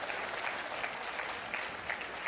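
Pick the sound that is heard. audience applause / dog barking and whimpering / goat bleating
audience applause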